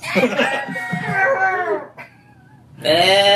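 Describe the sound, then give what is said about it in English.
A goat lets out a loud, wavering, human-like scream lasting nearly two seconds, then after a brief quiet gap a second shrill scream begins. “It does a goat scream.”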